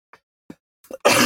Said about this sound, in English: Sorry, I've had a cough for about 2 weeks now and it just will not go away. I'm hoping it goes away before I go on holiday in 2 weeks.